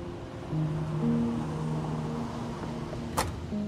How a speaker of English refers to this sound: Oh, a fish tank. Good sign. Oh, there's a tiny elephant blowing bubbles from his trunk. How cute.